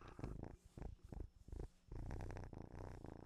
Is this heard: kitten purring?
yes